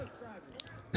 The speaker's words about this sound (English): Excuse me. A sip of water.